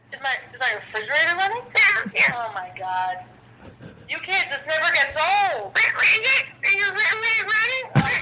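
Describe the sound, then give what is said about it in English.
A string of drawn-out, wavering cat meows, fairly loud, repeating with short pauses over a steady low electrical hum, heard through a phone line during a prank phone call. “The cat crank call? Oh, the cat calls. So it calls and it sends him into the show.”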